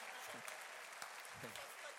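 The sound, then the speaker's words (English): An audience claps steadily, a dense, even patter of many hands at moderate volume, with a voice briefly audible beneath the clapping. “I suspect those who are not clapping.”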